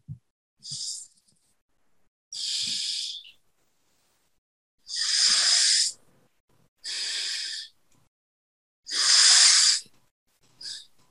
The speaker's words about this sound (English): Deep breath in, deep breath out from the same nostril, the left. Breathe in, breathe out. Breathe in and breathe out. And when you breathe out, make sure you're breathing out from your feet, top of your head, to all the cells of your body.